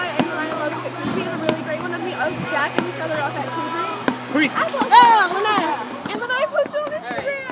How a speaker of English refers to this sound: So, for those listening now, it there may be a lot of lawnmower action that you're hearing.